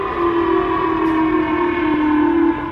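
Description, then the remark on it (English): A loud, steady missile warning siren blares continuously in Tokyo, Japan, set off by a North Korean missile launch. Its sustained tones hold level for the full stretch with no voices, a constant alarm drone. “Residents in Tokyo were told to duck for cover as sirens blared, and an announcer said North Korea has seemingly launched a missile.”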